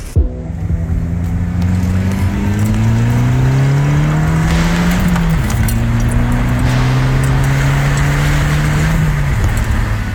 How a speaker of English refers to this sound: those car sounds, courtesy of Scott